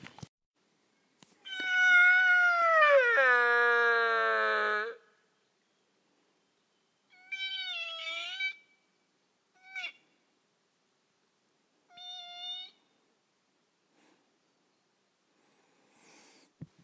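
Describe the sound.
A hunter in the hills at about 8:30 in the morning imitates a sika deer stag's roar: one long, loud, wavering whistle-scream, followed by three shorter, fainter calls with pauses between, and no talking.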